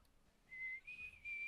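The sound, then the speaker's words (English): A person whistles a short run of three sustained, steady notes, the later ones slightly higher, clear with no talking over them. “Well, I guess if you need us, just whistle.”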